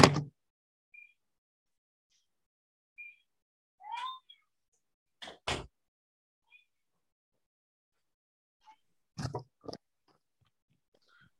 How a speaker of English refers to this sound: Yeah, hang on one sec, let me shut my door, keep my boy out.